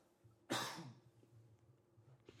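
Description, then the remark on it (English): A single loud, wet cough bursts out and trails off quickly. A low steady hum runs in the background, with no talking. “It's a wet cough, guys.”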